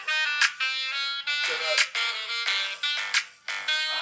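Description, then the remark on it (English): A mobile phone rings with an incoming call from a wife, a bright, melodic ringtone that repeats in steady, punchy bursts. It plays loud for several seconds without pause. “Wifey called my phone. I can't answer that.”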